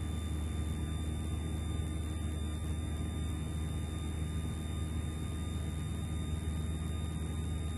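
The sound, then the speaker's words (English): A small airplane engine drones loudly and steadily during a short-field takeoff, a dense, constant roar with a low rumble that holds level throughout, with no voices. “Okay, short field takeoff.”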